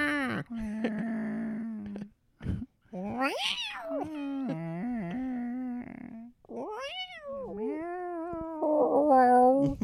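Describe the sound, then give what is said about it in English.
A person imitates a cat, letting out a string of drawn-out, whiny meows with rising and falling pitch, loud, one running straight into the next. “That'd be so funny if lions meowed. Meow. Meow.”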